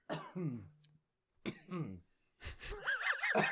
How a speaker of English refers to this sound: Damn it. Cough to the right. Cough to the left.